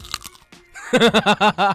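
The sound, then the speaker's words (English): A few quick, crisp crunches of raw carrot being chewed, followed by a burst of five short, rhythmic voiced pulses, like someone laughing. “Are you saying... ASMR with carrots.”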